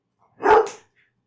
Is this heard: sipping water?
no